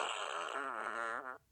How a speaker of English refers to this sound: So, there, we have the fart machine now.